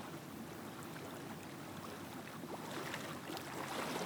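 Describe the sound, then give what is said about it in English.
A steady, broad wash of ocean waves crashing in on a sandy shore, swelling slightly louder toward the end, heard alone without any voices. “In front of us, waves are crashing. We're standing next to the ocean.”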